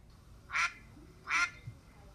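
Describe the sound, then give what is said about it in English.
Duck Sidekick gives two loud, nasal duck quacks, one after the other with a brief pause between them, over a quiet background. “Wait, Duck Sidekick, are you here?”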